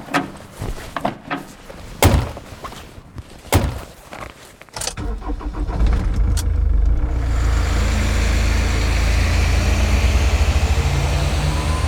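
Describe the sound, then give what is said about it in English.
Several car door thunks and slams, then a truck engine turns over and settles into a loud, steady low rumble as the vehicle drives off. No one speaks. “you're with me in the truck.”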